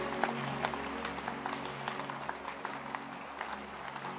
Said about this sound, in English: Keep clapping. It's exciting.